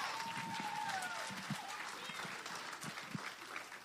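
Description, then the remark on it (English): A crowd claps for the Lord together in a dense, sustained burst of applause, with scattered voices and a few whistling or cheering tones rising above the steady patter of many hands. “All right, give the Lord a hand clap.”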